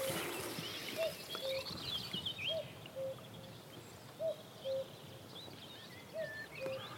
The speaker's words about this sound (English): We've got marsh fritillaries, we've got small pearl-bordered fritillaries, we've got a cuckoo calling, and this really is Dartmoor at its best.